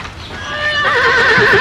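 A horse neighs loudly and close by, a single long whinny that starts steady and then breaks into a quavering, trembling cry toward the end. No one speaks.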